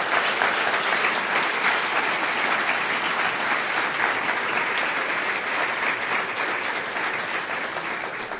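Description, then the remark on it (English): Sustained audience applause for the guests fills the space, a dense, steady patter of many hands clapping at once, loud and even throughout before easing slightly at the end. “Ladies and gentlemen, would you please give our guests a warm applause?”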